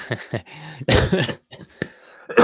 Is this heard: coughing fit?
yes